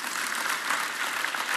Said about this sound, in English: Your pastor, Jeff Jakes, his wife, Katie. Would you clap your hands for them in their absence? Amen.